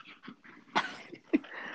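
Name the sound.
dog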